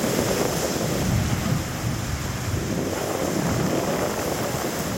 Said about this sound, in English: A powerful Category 5 hurricane ripped through Mexico's southern Pacific coast.